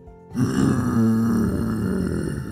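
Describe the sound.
A voice imitates the big growl of a huge purple hot dog monster: one long, low, rumbling roar that starts abruptly and holds steady and loud for about two seconds, with a gravelly, throaty texture.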